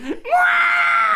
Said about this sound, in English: I can do a few screams for you.